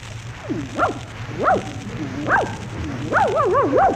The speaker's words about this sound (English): look at that cute little dog. Oh, isn't it a darling? Come here, doggy. Come here, you cute thing, you. What's the dog's name? Rin Don Don.